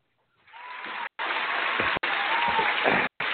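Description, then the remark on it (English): An audience applauds steadily for about three seconds, a dense, even patter of clapping at moderate loudness, broken twice by abrupt momentary cutouts. “Everybody applaud that man.”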